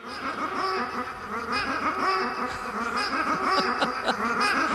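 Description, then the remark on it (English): Steady, busy stretch of repeated duck-like quacks layered into the end of a song, the honking calls bunching together in a dense, rhythmic loop with a buzzing, insect-like texture underneath. “It just repeats those ducks.”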